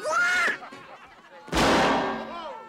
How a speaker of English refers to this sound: Yeah, that was the cannon.